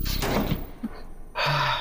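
A door swings shut with a brief thud and rattle, followed by a rougher burst of noise near the end. No one speaks.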